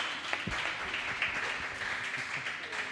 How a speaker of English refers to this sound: Hey, everyone, let's get some round of applause going, eh? Clap hands. Yeah.